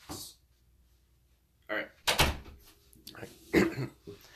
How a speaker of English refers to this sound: I'm gonna close the door.